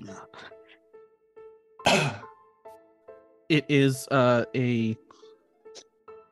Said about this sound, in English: Everybody's coughing.